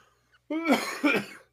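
Two quick, harsh coughs in close succession, fairly loud, after a brief quiet moment.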